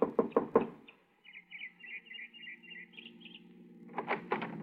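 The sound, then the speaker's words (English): Four quick, sharp, loud knocks on the door of a small house in the evening, followed by faint bird chirps in the background and then another short burst of knocking. “I got her home address and knocked at the door of a small house 15 minutes after she arrived home that evening.”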